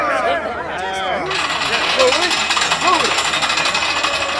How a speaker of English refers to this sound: The winch goes smoothly now? Why, yes, I believe... I don't want you to believe, I want you to know. But I assure you... Go and test it at once. Yes, Doctor. At once, Doctor. All right, men. Test number one.